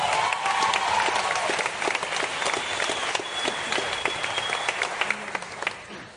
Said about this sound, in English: And I think it's an incredible cause, and I think the Cliff Central team need another big round of applause.